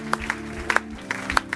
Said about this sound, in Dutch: Come on, why don't we give Jesus a great big hand right now? Laten we Jezus een enorme applaus geven.